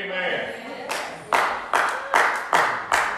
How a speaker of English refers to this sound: I think I'm going to lay down the mic and clap my hands right there.